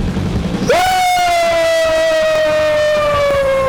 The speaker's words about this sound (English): Woo! You get to scream in the mic, and I don't get to scream in the mic. Because I'm more conscientious of it, and I try not to scream directly into the mic.